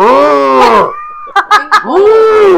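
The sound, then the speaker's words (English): A person imitates Ferdinand the bull mooing, with two long, low, drawn-out moos. A few short breathy chuckles fall between them. “Ferdinand.”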